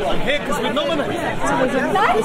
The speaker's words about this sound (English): Somebody's excited to be here because they've been nominated. I'm literally stuck in this crowd of people.